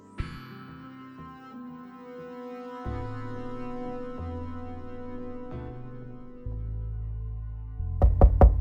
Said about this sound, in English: I awoke to pounding at my door.